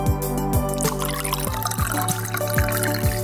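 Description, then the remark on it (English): Piacidor wine glugs steadily out of a bottle into a glass, a quick, regular run of liquid bursts over a steady humming tone, with no one speaking. “So as you sit back and listen to The Psychology of Money, which happens to go so nicely with The Thinker, enjoy a glass of Piacidor, and we hope that we will like it as much as we do.”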